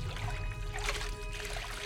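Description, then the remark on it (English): Water trickles and laps gently in a pool, a soft, steady bubbling over a low background hum, with no voices. “The water rippled and an image formed.”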